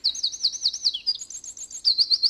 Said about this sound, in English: And I couldn't leave out the wren, one of the finest singers we have, one of the loudest stars of our dawn chorus here in Ireland as well.